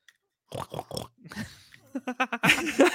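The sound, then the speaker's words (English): A person imitates a pig with a run of snorting, grunting oinks, short bursts in quick succession ending in a louder, rougher snort, fairly loud. “Actually, that's a good snort.”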